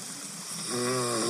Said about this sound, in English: He's snoring. He was snoring so loud. But listen, when he's extremely tired or drunk, he'll snore.